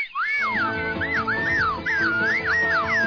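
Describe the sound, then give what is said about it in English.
A slide whistle swoops up and down in quick repeated glides, loud, with a low murmur of background sound underneath throughout. “It's like, wow, who are these clowns with the slide whistle?”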